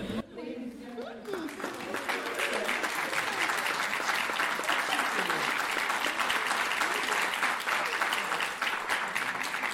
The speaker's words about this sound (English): More than anything, we celebrate this author tonight, because through it all, through the loss of a loving mother, through a riveting examination of race and queerness, grief and vulnerability, he's still here. And that alone is worth an applause.